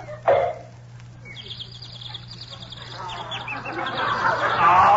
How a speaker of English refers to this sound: But I don't hear no birds. Turn your head a little bit more and you will.